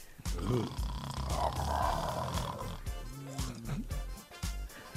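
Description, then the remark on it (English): A voice imitates loud, rumbling snoring, drawn-out grunting snorts repeated over several seconds, harsh, like a bear snoring. “So either real fine and you snoring like a damn bear.”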